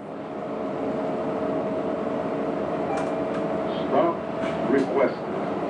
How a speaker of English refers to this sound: I've just landed in Austin. I'm on the bus from the airport. It's one of those lovely smaller cities where you can just jump on a bus at the airport and get downtown in 20 minutes